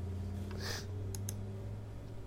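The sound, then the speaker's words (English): A few soft clicks from a computer mouse or keys, a brief rustly burst followed by two sharp taps in quick succession, over a steady low electrical hum with no talking. “What are you clicking here, boy? Get it off the screen.”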